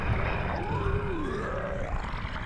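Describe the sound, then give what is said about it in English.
A deep, rumbling monster growl rolls on steadily for a couple of seconds, low and guttural with a slowly shifting pitch, loud and unbroken with no speech over it. “bringing you the creeps and the goblins and the ghosts and the ghouls and the growling things in the background that just scare the dickens out of me.”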